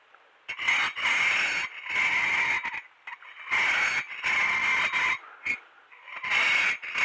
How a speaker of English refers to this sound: Got a coffee cup solo here for you. That's kind of an interesting sound. That's just a spoon going up against a coffee cup.